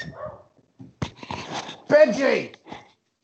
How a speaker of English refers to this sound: Hang on. Sorry, this bloody dog.